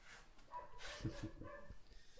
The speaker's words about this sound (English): Oh boy, dog is going crazy.